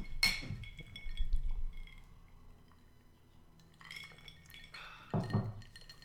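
Glasses clink together in a toast: a bright clink rings out at the start, followed by a couple of softer glassy taps a few seconds later. No one speaks.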